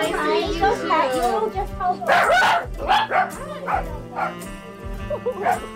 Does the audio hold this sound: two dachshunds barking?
yes